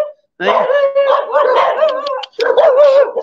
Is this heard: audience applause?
no